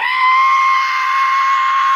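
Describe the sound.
A voice imitates the screech and whistle of a jet going down: one loud, steady, high-pitched wail held for about two seconds, strained and slightly wavering, with no speech.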